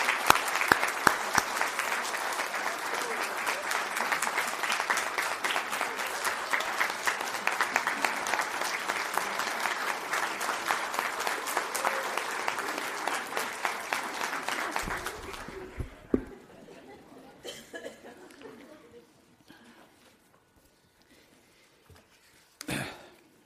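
A church audience applauds a Person County public official in a dense, steady wash of clapping for about fifteen seconds, then it thins to a few scattered claps and fades into near quiet with faint rustling.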